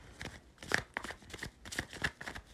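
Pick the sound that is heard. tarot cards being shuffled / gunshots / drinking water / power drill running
tarot cards being shuffled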